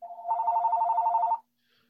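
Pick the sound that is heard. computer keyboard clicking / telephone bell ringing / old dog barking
telephone bell ringing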